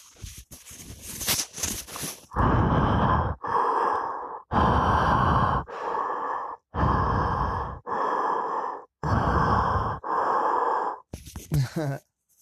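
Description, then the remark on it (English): A voice imitates Michael Myers' slow, heavy, menacing breathing from the film Halloween: about eight long raspy breaths in a steady in-out rhythm, loud, after a few brief soft noises at the start. “Because all you hear at the end is Michael's breathing of.”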